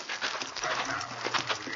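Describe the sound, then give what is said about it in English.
Horses being led at a walk out of sight, their hooves clip-clopping in a steady, slightly uneven rhythm, with a rough rustling hiss filling the background. “Come on, let's get the horses out of sight.”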